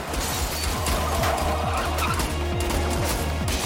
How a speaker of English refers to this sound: Holy shit! Nice. I love practical car crashes. It's one of my favorite things. It is the best.